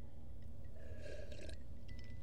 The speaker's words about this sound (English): Oh, I swallowed an ice cube.